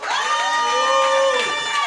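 A live audience cheers loudly and steadily, with whooping voices rising over the crowd noise and clapping mixed in throughout the short burst.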